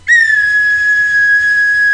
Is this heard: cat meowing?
no